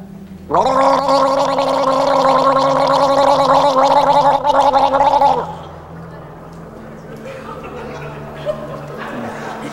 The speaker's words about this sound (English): Now, the first one, we're gonna just gentle gargle, and then I'm gonna show you how we actually, like, really hardcore gargle. But this is what I want you to do. Take a sip of water, and you're gonna go like this.